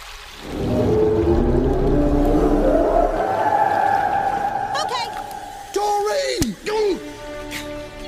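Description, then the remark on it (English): A voice stretches out long, wavering moans in imitation of whale calls, loud, sliding up and down in pitch over a watery, rumbling background. “No, no more whale. You can't speak whale.”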